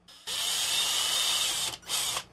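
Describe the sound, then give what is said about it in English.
A power drill whines at high speed drilling pilot holes in plastic, in two bursts, a long run then a brief pause and a shorter second run, loud with no talking. “First, I'll drill my pilot holes and then we'll work up to the actual size.”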